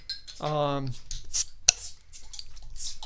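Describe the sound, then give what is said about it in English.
A single sharp metallic pop of a Lagunitas beer bottle cap coming off, preceded by a brief sustained voiced tone, with faint clinks and rustling around it. “But, you know, one thing, you want to pop these open?”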